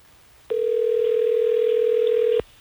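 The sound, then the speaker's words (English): A steady telephone dial tone as the Hot 101.5 radio show in Tampa Bay places a call to a listener, humming for about two seconds, a single continuous tone at even loudness that starts and stops abruptly, with no voices. “let's try to get Gloria on the phone so we can get to the bottom of it”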